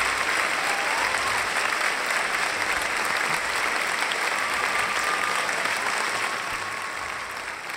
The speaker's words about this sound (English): Them claps ain't a little long this week. The claps is definitely extended. I told you they extended.